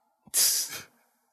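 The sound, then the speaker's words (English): A single forced sneeze done on a dare during a game of Truth or Dare: a brief intake, then a sharp, hissy burst that trails off within about half a second, sounding staged rather than natural, with no talking. “I dare you to sneeze.”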